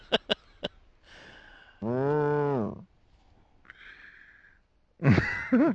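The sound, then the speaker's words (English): A single loud, drawn-out moo stands out among scattered clicks, soft hisses and other short tonal calls, like a busy farmyard or game soundscape with no one talking. “Somebody brought a cow to the game.”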